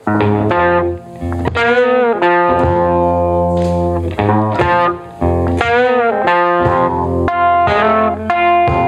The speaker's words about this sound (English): I want to play a clip of one of my all-time favorite blues songs.